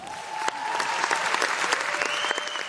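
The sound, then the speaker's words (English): Sustained applause from a large conference audience in Paris for the climate envoy as she announced that Venezuela would support the climate agreement, a dense, steady wash of clapping that holds at an even, fairly loud level throughout, with a faint tonal hum running underneath. “And the climate envoy also earned huge applause when she announced that Venezuela would support the agreement.”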